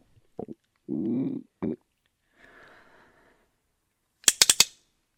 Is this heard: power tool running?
no